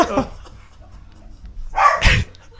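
Two dogs, Lindy and Peggy, bark and yip in two short, loud bursts, one at the start and a sharper, higher cluster near the end, with quiet stretches between.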